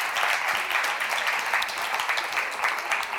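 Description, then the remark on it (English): An audience at the Mercy Vineyard Church claps steadily for a few seconds, a dense, even wash of many hands, with no voices standing out. “And you can clap for that.”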